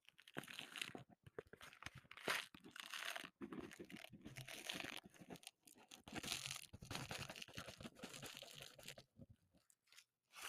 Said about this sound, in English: Some pop rocks in water. Are we ready? Pop rocks going in.